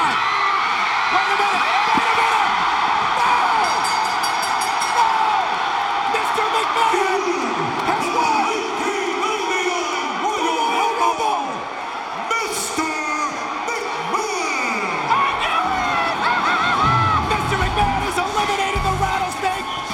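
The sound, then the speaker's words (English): A huge wrestling audience at the 1999 Royal Rumble yells and roars in shock as Vince McMahon wins, a loud, unbroken wall of voices with scattered whoops and shouts rising above it for the whole stretch. “The shocking sound from the audience.”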